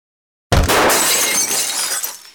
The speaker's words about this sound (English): A hefty rock lay in the center of the room, surrounded by shards of plate glass. They were breaking through the picture window.